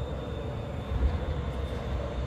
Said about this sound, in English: The plane is not following you around.